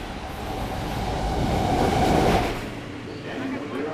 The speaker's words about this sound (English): After more than a year, riding the subway for the first time was a nerve-wracking experience.